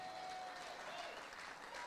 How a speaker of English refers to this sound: Oh, thank you for your puny applause.